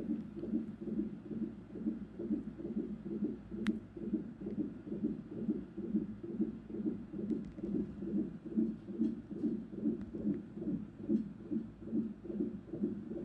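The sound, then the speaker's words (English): A fetal heartbeat on a Doppler monitor during a growth scan in a hospital room, a fast, steady stream of rhythmic whooshing pulses, roughly two per second, low and muffled, continuing without pause and with no voices. “And I listened to your heart, quick and steady, filling the otherwise empty room.”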